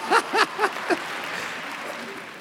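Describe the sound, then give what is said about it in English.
An audience claps to thank the Lord in a steady, even patter of many hands, starting just after a few short, rising vocal whoops or cheers and carrying on at moderate loudness. “I think all of you here should clap more than everybody, because you should clap more than...”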